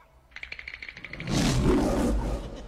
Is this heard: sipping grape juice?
no